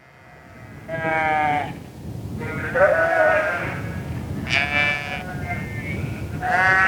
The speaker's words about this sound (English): And several years ago, I was with a family of shepherds, and they were herding a sheep, a herd of about maybe 40 or 50 sheep, and they invited me to come with them.